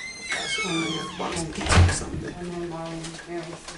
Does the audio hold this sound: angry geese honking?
no